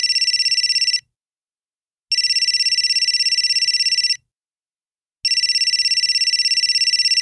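A telephone rings three times, each burst a loud, rapidly trilling electronic tone separated by short pauses of silence, with no voices present.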